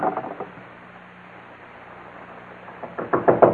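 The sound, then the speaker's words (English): Repeated heavy pounding on a door, a quick cluster of blows, a pause filled with low hum, then a louder, harder volley of thuds. “Open up, Morgan. We know you're inside.”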